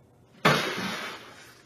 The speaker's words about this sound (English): That sound broke the silence in Earl's Cove at around 3 last Thursday morning. Turned out it was a bear smashing through the canopy of a Suzuki, trying to get at 6 cases of pop inside.